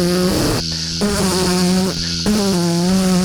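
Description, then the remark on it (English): A voice imitates the loud cabin noise of a 300-seat airplane with a steady, buzzing hum held at a low pitch, briefly shifting twice before droning on, with no words spoken. “Because you could barely hear it over my noise of the airplane.”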